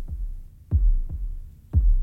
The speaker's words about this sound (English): You sit with your eyes closed, and you start to hear what sounds like a heartbeat. It swells in volume until it's unmistakable. This is a heart,